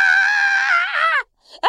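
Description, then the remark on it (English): A person lets out a loud, sustained shriek for over a second, the pitch wobbling before breaking off, followed by a short pause and the start of another yell. “Just start flailing and screaming until they go away.”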